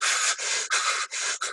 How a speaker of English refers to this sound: If you've got a tensed out breath, it gets much closer to hyperventilation, which sounds much more like this.